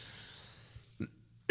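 Two abrupt, harsh coughs after a quiet stretch, the first short and moderate, the second louder and cut off at the end, with no talking, as a man chokes on his coffee.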